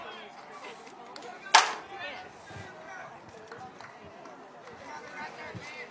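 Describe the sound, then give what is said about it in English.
A baseball crowd of Woodville fans murmurs and cheers with scattered clapping, punctuated by one sharp crack early on, then settling into a steady, moderate hubbub. “Woodville fans coming alive. They've got something to clap about.”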